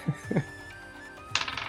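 Dice clatter on a hard tabletop during a tabletop game: a couple of sharp knocks, a brief pause, then a quicker rattling tumble that trails off, rolling an 11. No one speaks.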